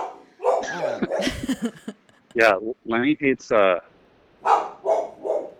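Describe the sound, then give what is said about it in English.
A dog barks loudly, about four quick, harmonic-rich barks in a row, with a person talking just before and after. “Who's there? Is it a truck? Bark if it's a truck. Bark if it's a human.”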